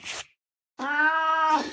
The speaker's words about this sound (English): Hey, everybody. It's Bernie the Cat. Hey, Bernie.